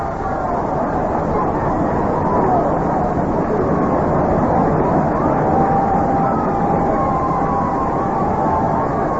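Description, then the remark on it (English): A steady, dense roar of a large Minnesota stadium crowd cheering Herman Killebrew's 437-foot leadoff home run to deep center field in the bottom of the fifth inning, loud and sustained throughout with a broad wash of voices and no break. “Cuellar going way back, and this ball is out of here, and a home run for Herman Killebrew, and some crowd it is.”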